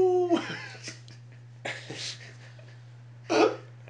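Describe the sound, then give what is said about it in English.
A person tries to howl like a wolf: a short strained voiced note, then several hoarse, breathy bursts spaced over a few seconds, over a steady low hum. “But Wolfpack. Oh my god, my throat is dead. I can't even howl.”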